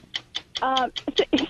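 The stopwatch ticking of the TV show 60 Minutes, a steady, quick rhythm of sharp, bright clicks, about five per second, while a voice briefly talks over the second half.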